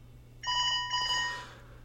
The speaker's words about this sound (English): My phone's ringing.